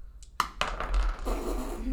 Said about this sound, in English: A second dice. Go ahead and roll 2d6.